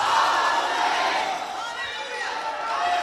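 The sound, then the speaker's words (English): An audience screams and cheers loudly for the full three seconds, many overlapping voices forming a dense, sustained roar with high shouts rising and falling throughout. “Somebody scream, it's all on the table.”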